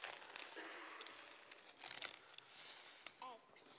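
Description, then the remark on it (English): Pink-themed wrapping paper crinkles and rustles steadily as a gift of Cadbury's mini eggs is unwrapped, fairly quiet, with brief sharper crackles and a faint voice murmuring underneath. “Nice pink-themed paper here. Oh, what's this?”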